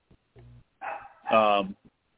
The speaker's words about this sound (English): Tell that dog to be quiet.